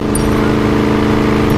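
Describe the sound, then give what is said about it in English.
A loud, steady engine roar with a strong humming tone from a silver Koenigsegg Regera hypercar as it is jumped off a launch pad, sustained without a break for the whole moment, powerful, with no voices over it. “We have liftoff! Jump a $2 million hypercar.”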